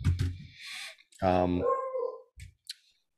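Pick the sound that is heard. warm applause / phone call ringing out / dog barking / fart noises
dog barking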